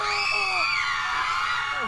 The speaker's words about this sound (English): What the hell was that? That sounded like the children screaming. Let's go see what's happening.